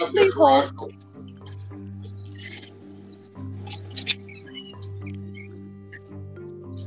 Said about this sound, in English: The garage door was opening.